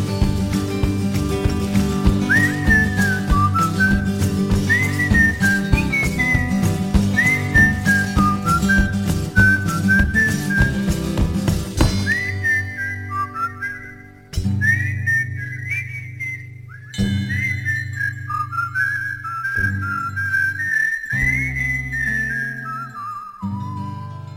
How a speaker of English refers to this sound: Like a little bit of whistling